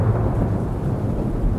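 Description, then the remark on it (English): A deep, sustained rumble of thunder rolls steadily from a storm with lightning rolling in over a suburb of Portland at 7:30 p.m., heavy in the low end and fairly loud, with a faint wash of rain beneath it and no voices. “A sudden flash of lightning brings back the pain in his stomach that started last night.”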